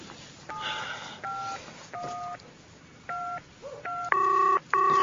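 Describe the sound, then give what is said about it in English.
Phone keypad dialing tones as someone on a walking trail dials an emergency hotline: a quick series of about seven short dual-pitched beeps pressed in irregular rhythm, clear, the last two louder and longer, with no talking. “oh my God, where's the phone now?”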